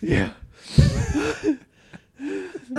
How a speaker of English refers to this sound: He's like gasping for air.